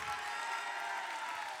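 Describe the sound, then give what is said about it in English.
An audience claps steadily, a dense, continuous wash of many hands with no pauses, bright and hissy in tone and holding an even loudness throughout. “Keep clapping.”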